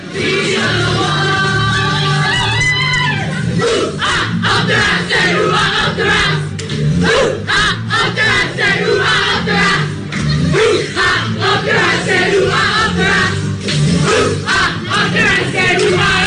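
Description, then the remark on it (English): The Irish women's soccer team chanting and shouting together in their dressing room, celebrating qualifying for the World Cup, including a chant of "up the ra"; a loud, rhythmic celebration, voices overlapping in bursts with cheers and whoops throughout. “with regards to your reactions to the Irish women's soccer team in their own dressing room celebrating, and part of it involved up the ra.”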